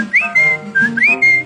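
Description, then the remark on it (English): A person whistles a birdlike call: two bright, clear phrases, each a quick upward swoop settling into a held note, loud over a soft musical backing. “A Dickey Bird whistled, haven't you heard?”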